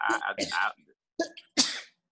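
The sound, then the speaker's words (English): Loud sneezing: a voiced, drawn-out buildup followed by two sharp, breathy bursts with short pauses between them. “Sounds like the new 30 sneeze, but go ahead.”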